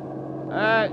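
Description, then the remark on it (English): A bus engine rumbles steadily, then swells into a louder, higher droning whine for a moment as the bus passes by before settling back. “You in the bus! Stop, will you? Stop!”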